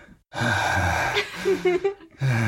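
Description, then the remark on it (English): A person imitates heavy, raspy breathing into a telephone as a prank call: a long loud breath, a brief wavering pause, then another breath starting. No words are spoken. “All you can hear is breathing.”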